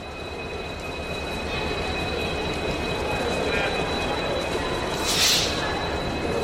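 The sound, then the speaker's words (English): A metro train rumbles steadily through the world's deepest train station, a thin high electric whine riding over the low roar, with a sharp hissing burst near the end and faint crowd murmur. “So finally, we've reached the bottom of the world's deepest train station.”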